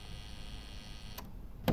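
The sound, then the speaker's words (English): A flat's door entry buzzer drones with a steady electric hum for over a second, then two sharp clicks as the lock releases to let a visitor in, the second one louder. “I'll buzz you in.”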